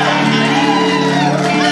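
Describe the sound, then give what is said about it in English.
An audience cheers and whoops loudly without a break, many voices shouting together in a dense, steady roar with a few higher-pitched whoops rising above the crowd, cheering on people invited to come up to the front. “We're not judging, we're cheering you on.”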